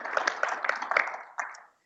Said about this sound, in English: So I think we can have a round of applause.